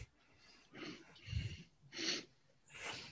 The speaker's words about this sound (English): My man's breathing, boy. My man wants to see that. I was panting for it.